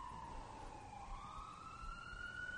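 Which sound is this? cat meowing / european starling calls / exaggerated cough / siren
siren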